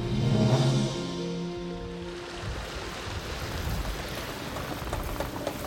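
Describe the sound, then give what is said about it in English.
Water rushes and splashes steadily into a ship's hull after the ship has been hit by ice in Antarctica, a dense, continuous roar. Low groaning, creaking tones sound at the start before the torrent dominates. No one speaks. “Water is pouring in.”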